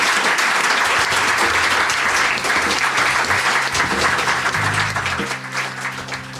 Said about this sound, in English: On that note, please give a big round of applause to Jigar Shah.